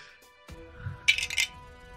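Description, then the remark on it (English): Dice clatter briefly across a hard tabletop as players roll initiative, a quick cluster of sharp clicks and rattles lasting about half a second, fairly crisp, with no talking. “All of you roll initiative.”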